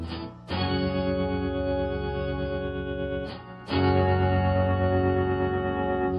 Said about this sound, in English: My keyboard has wonky keys on it, so once again I cheated and made use of my Electro-Harmonix B9 guitar pedal, which basically is a plastic box that generates various keyboard tones triggered by plugging a guitar into it and playing it normally.